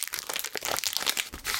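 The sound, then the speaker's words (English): A bandage wrapper crinkles and crackles in quick, irregular bursts for over a second while a bandage is put on a paper cut, a steady hiss of crisp plastic rustling with no voices. “Finally, an appropriately sized bandage.”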